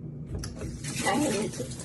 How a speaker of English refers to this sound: So let me show you. First, I'm gonna turn on the tap.